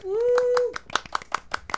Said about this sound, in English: International Women's Day. So let's have a little applause for the women.